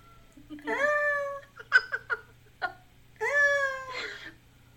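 A cat meows: two long, drawn-out, wavering meows bracketing a few short chirpy mews, with quiet pauses between calls and no talking.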